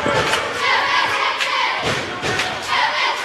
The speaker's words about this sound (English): Crowd's making some noise.